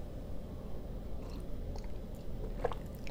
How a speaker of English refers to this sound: I'm trying to sip coffee quietly because I listened to my podcast and I thought, that's annoying. I should stop that.